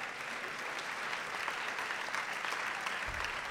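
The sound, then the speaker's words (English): Steady audience applause fills the whole stretch, a dense wash of many hands clapping at once, moderately loud and continuous without pause. “All right, let's give it up.”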